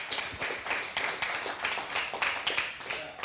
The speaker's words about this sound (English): You can clap. Amen.